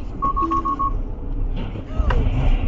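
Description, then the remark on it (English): A Tesla's autopilot collision warning sounds a quick run of about five short, high-pitched beeps over a steady low road rumble, warning of two cars ahead about to collide, followed a moment later by a brief rougher burst of noise. “You hear that beeping, and then these two cars collide up in front.”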